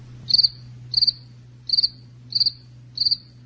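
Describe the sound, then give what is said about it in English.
Five evenly spaced cricket chirps from a sound effect, each a quick trill of three or four pulses, ring out clearly over a faint steady low hum, with no voices present. “Those are crickets.”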